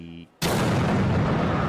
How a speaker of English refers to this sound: Whoa! Ladies and gentlemen, a giant green confetti explosion just took place on the field. The cloud of green paper is hanging in the air in the shape of a huge question mark.